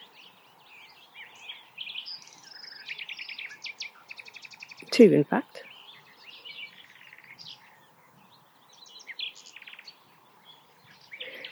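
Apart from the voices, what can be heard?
nightingale singing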